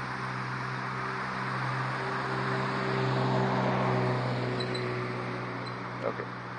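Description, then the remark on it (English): A car being waved on rolls past at the intersection of Southwest Cascade Avenue and Southwest 27th Street, its engine hum and tire noise swelling steadily then fading, over a constant rumble of street background. “Wave that car on.”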